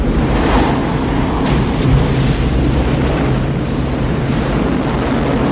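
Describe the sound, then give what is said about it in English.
Heavy surf roars without pause during a 50-year storm, a dense wall of crashing waves whipped by strong wind buffeting the microphone. It is loud, with no voices, just churning storm-driven water throughout. “But I knew you wouldn't miss a 50-year storm”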